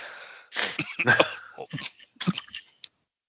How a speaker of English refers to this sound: having a coughing fit. You'll have to forgive him for just a second. It's that illness thing. Yeah, I think I got that adult RSV gimmick going on.